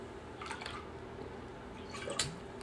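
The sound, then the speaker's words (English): Someone takes a quick sip of water: two soft, wet slurping bursts about a second and a half apart, over a quiet background with no talking. “Excuse me, I needed a drink of water.”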